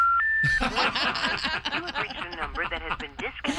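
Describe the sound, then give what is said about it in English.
A couple of quick touch-tone beeps from a phone number being dialed, quickly swamped by loud laughter and animated voices that fill the rest of the moment. “Wipes you clean, and then you call her phone.”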